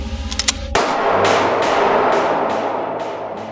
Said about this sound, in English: The gunshot rings in his ears, reverberating through his skull and throughout his body in waves.